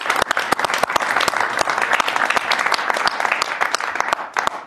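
An audience bursts into a round of applause, many hands clapping in a dense, steady patter with sharp individual claps standing out, sustained and loud before tapering at the end.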